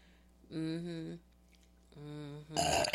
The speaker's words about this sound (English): That's a beautiful burp, right away.